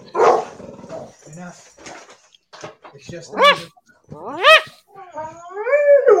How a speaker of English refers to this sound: It's just the neighbors. Sorry, I love dogs. And, it's just the neighbors.